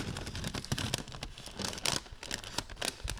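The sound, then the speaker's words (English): Stiff kraft paper from an industrial catering kitchen being crumpled and crinkled, a continuous run of dry, crackling rustles with sharper bursts scattered throughout, no voices. “Wrong! Craft paper!”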